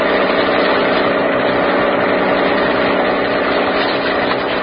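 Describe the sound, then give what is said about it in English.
A police launch's motorboat engine drones steadily and loudly throughout during a search of San Francisco Bay, a continuous rumble with a buzzing edge that neither rises nor falls, with no voices over it. “Oh, please, could you not make this boat go faster?”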